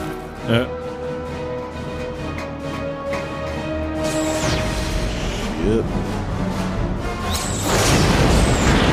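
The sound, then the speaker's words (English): Sci-fi explosions rumble on a starship bridge, with broad noisy blasts swelling around the middle and again near the end, laced with whooshing electronic tones and indistinct voices underneath. “Yeah, some good bridge explosions.”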